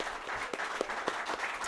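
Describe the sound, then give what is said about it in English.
A crowd applauds steadily, a dense wash of many hands clapping at once with a few sharper claps popping out, even in loudness throughout, at Happy Harbor Comics in downtown Edmonton. “No, don't applaud for Jay.”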